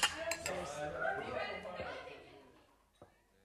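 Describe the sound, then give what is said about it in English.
Glasses clink together in a toast, a bright knock at the start and another a few seconds later, over a busy murmur of voices and clattering tableware. “So I think we'll drink to that. Cheers.”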